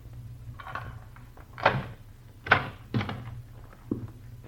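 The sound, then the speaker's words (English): The door of a room in a rooming house opening as someone enters, heard as a few sharp thumps and rattles spread over several seconds, over a low steady hum with no talking. “Close that door.”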